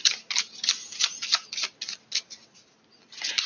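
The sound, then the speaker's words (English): Shuffling of a deck of cards: a quick, uneven run of crisp papery snaps and flicks, ending in a longer fluttering riffle, with no voices. “Keep shuffling.”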